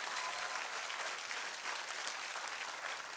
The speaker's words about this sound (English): Somebody clap your hands and shout like God is able. Come on, somebody clap like God is able. I didn't say you're able. I said, why don't you clap like God is able?